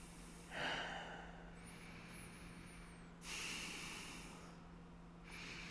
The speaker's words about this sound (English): This awkward silence with heavy nose breathing was brought to you by yours truly.